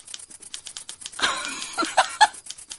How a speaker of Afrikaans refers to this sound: Dis was 'n tikmasjien.